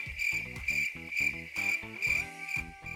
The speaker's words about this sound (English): I hear crickets.